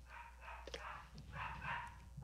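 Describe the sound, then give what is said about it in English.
A dog barks several times in quick, uneven succession, the barks sounding somewhat muffled, with a low steady hum underneath and no talking. “I think your dog is giving you a warning as well.”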